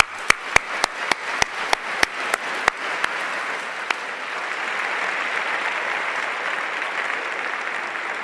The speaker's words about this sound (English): But that was a cueing error, because that was a round of applause